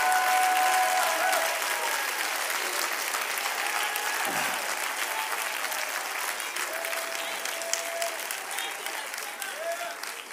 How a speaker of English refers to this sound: Clap your hands and praise that name.